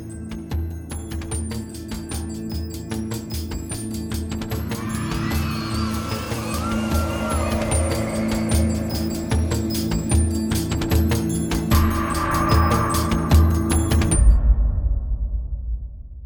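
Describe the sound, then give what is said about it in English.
The neighbors' air conditioner runs outside with a steady, droning hum the whole time, with children's shouts and chatter rising and falling faintly over it outdoors. “Air conditioning is on outside for the neighbors. So are children.”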